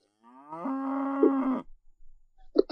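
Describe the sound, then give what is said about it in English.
A single loud, drawn-out cow moo lasting over a second, steady, followed by a few faint, brief sounds. “Why do I get the cow?”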